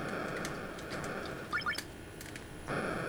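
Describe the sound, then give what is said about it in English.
Video game missiles fired by the player as countermeasures: a quick burst of bright, rising electronic chirps over a constant hissy background, with a few scattered clicks and a swell of noise near the end. “It's me firing my missiles. My countermeasures, I guess.”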